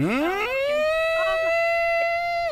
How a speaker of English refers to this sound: Sirens going off.